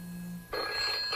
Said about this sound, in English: Is that like your ringtone and everything? That's a ringtone, yeah.